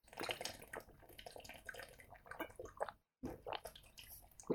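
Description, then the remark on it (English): Sloshing and gurgling of water in bottles as people race to drink their bottles of water after a countdown, with irregular gulps and splashes coming in uneven bursts, a brief pause, then more quick swallowing sounds. No one speaks. “How about mouths off the water bottle until mouths off the water bottle until. Okay, we're not pouring it into our mouth.”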